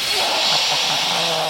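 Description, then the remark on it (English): A snake hisses in one long, steady, breathy rush that stays loud and even for about a second and a half, with only faint murmuring traces underneath. “Now, not only did I lose, there's also snakes coming now.”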